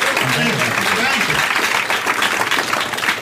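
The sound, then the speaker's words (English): Steady, dense audience applause fills the whole stretch with a loud, even roar of clapping, while a voice talks underneath it. “You should give them a round of applause.”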